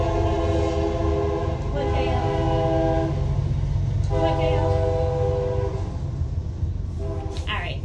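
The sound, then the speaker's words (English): A train rumbles steadily past while its horn sounds in long sustained blasts, loud and continuous over the heavy low roar of the cars. “I'm leaving the train going.”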